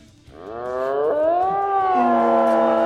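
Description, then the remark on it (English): An eerie, drawn-out wail from an undead king in a tabletop role-playing game swells upward in pitch and then holds, loud, with a rough, roaring edge and no talking over it. “He is going to step forward to here. Ugh. And use whale.”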